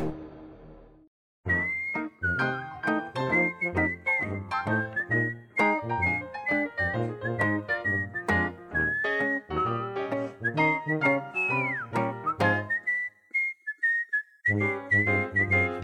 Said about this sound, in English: Don't whistle over the whistle. Sounds weird. Let the music whistle itself.